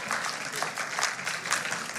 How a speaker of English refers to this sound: So yeah, you can clap for that.